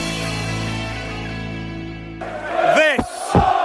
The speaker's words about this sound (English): And as you can hear, the Brentford fans are cheering now. We're coming into the very last moments of the game at New Griffin Park. And it's Brentford's first game in the Premier League